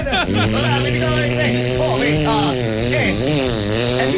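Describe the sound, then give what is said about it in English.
A voice imitates a Vespa scooter engine, a steady nasal drone with rising and falling pitch sweeps like revving, loud and continuous for about four seconds with no other talk. “A Vespa. That's what it really sounds like.”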